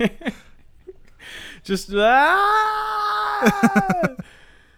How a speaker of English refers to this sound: Okay. It was two bobcats facing off. Oh, I knew it must have been some sort of cat.